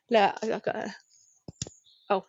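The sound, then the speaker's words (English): A couple of sharp pen clicks in quick succession from a four-colour clicky pen, briefly interrupting a person talking before and after. “I've got one of those clicky pens. Can you hear it clicking? With four colours on.”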